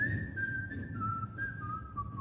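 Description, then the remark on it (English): A person whistles a song melody in front of an audience, a single steady tone gliding between notes in a tuneful phrase, moderately loud over a low background rumble. “my brother's just cringing in the front row as I whistle there.”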